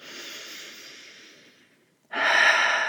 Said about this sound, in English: Deep breath in. Open mouth, exhale. One more just like that. Deep breath in. Open mouth, exhale.